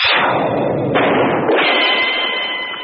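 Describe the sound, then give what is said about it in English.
A loud gunshot sound effect bursts out at once, followed by a few more blasts and a long, rumbling, echoing tail with a faint ringing tone. No one speaks. “A gunshot rang out.”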